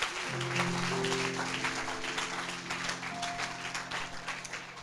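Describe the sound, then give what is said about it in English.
A crowd claps unto the Lord steadily and loudly in a dense, continuous patter, while sustained low organ or keyboard chords hold underneath throughout. “I thought we would clap unto the Lord.”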